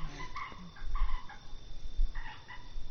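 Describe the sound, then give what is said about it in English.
A tree frog calls in short, sharp, repeated bursts, a quick cluster early on, then a pause before another pair of croaks, loud over a low background hum. “Tree frog.”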